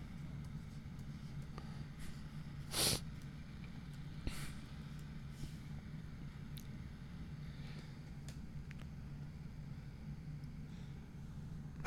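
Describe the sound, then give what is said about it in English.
A single sharp sneeze bursts out over a steady low background hum, followed a moment later by a fainter, shorter noise; otherwise the scene stays quiet with no talking. “Bless you.”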